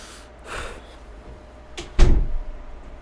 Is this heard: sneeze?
no